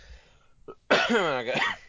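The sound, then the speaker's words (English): A single loud, raspy cough, preceded by a brief catch in the throat, with no talking around it; a lingering cough left over from a recent illness. “I got a little residual shoot interview cough from it, but I'm doing okay.”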